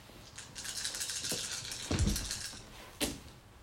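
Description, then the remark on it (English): Dice for a perception roll in a tabletop role-playing game clatter and rattle in a hand, then tumble across a surface with a couple of sharper clicking impacts, one landing near the end. No one speaks. “I need one more dice.”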